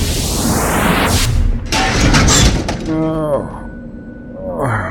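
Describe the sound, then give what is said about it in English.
A man drops out of nowhere and his body slams down onto a car with a loud, heavy crash and a burst of cracking, crunching noise lasting about a second, followed by a voice speaking as the din settles. “Guy dropping out of nowhere, right onto our car?”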